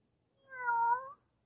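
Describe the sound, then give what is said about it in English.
A single clear cat meow, rising then gently falling over about three-quarters of a second, with nothing else audible around it. “Here, kitty, kitty, kitty, kitty, kitty. Oh, you listen, won't you?”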